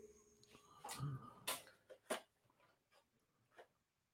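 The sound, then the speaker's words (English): A pair of scissors is picked up amid a few sharp clicks and light clatter, four or five brief knocks spread over a few seconds, with no talking. “So I'm sorry, I'm just grabbing a pair of scissors here.”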